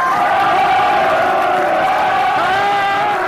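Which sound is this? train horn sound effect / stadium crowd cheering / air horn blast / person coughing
stadium crowd cheering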